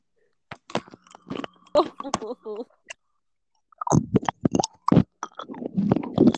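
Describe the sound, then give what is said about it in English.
Teeth click and tap against a microphone in quick, irregular bursts of sharp, dry transients, with brief wet mouth noises and a faint voiced murmur between the clusters. “I can hear it against your teeth. It's like clicking.”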